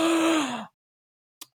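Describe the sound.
A voice imitates a yawn: a loud, breathy, drawn-out vocal sound with a slowly falling pitch lasting over half a second, then silence broken by a brief faint click.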